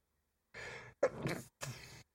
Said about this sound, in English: Bless you.